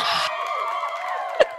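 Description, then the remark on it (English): A crowd roar sound effect: a crowd roars and cheers in a dense, sustained wash of many voices, loud, with a sharp whoop rising out of it near the end. “Go ahead, podcast production company. Insert crowd roar here. The fans go wild.”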